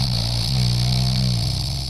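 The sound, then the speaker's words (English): A single drawn-out snore, a low, buzzing rumble that holds steady and fairly loud for about two seconds without a break, with no voices over it. “That snore sound a lot longer than I'm used to.”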